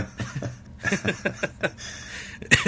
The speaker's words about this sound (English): I'm gonna cough over here.